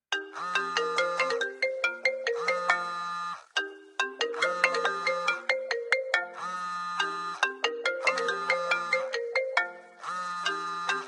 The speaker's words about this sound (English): Okay, I guess it's just a phone ring like Putin's calling.